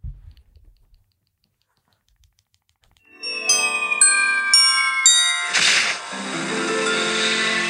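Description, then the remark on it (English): After a brief silence, bright tinkling bells ring out in a quick festive flourish, layered with shimmering chimes and a sustained jingling wash, a Christmas sound effect from a Christmas sound effects music video, with no talking. “Let me see if there's another Christmas sound effects music video.”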